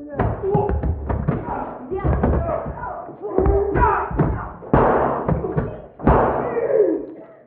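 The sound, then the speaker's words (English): A door bursts open with a loud bang after several heavy thuds and knocks, while muffled voices talk underneath. “All of a sudden, the door swung open, breathless and armed with a gun.”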